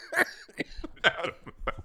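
A run of harsh, raspy coughs comes in uneven bursts, two of them stronger than the rest, moderately loud, with no talking.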